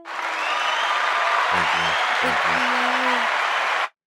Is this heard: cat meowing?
no